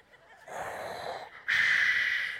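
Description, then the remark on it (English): A voice imitates Darth Vader's heavy mechanical respirator breathing: one long, hissing, raspy intake, a brief pause, then a louder, harsher breath out, alone with no talking. “And the thing that I love as I began to watch the narrative of Darth Vader is that no matter what was going on in his life, he still had the same breathing pattern.”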